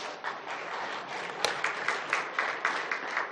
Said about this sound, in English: Well, that was like a nice golf clap. Let's try it one more time.